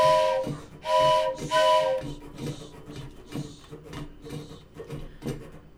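Two loud whistle blasts from the steam train the Coyote Special, bound for Chicago, the second held longer, then a steady rhythmic chugging as the locomotive pulls away, without voices.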